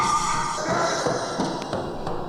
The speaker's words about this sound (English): That's him yelling, I think. I think he's just playing timpani and drums and cymbals and yelling in this track.